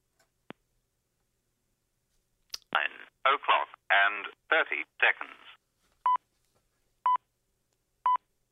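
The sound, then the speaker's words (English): Telephone keypad dialing tones as someone calls the talking clock service on its last day: a quick run of short electronic bursts after a click, followed by three evenly spaced beeps a second apart, clear over a quiet line. “We're going to make a call because today will be the last time in history that you can make this phone call.”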